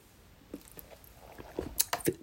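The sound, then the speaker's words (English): Quiet mouth sounds of someone sipping and swallowing water: a few soft wet slurps and gulps, growing slightly louder near the end, with no talking. “Wait, let me take another sip of water.”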